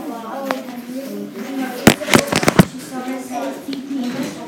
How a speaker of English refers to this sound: On that kind of day, a firecracker might light up.